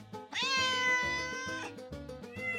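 cats meowing

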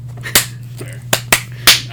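single hand clap

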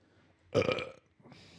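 burp into the microphone

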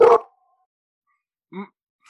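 puppy barking

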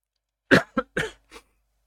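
coughing

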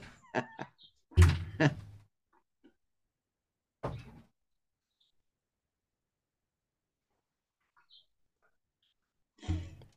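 door being opened

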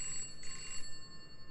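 telephone ringing

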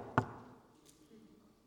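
knocking on wood

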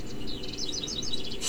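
birds chirping

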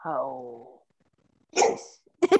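dog barking

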